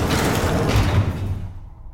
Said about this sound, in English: Close the door, quick!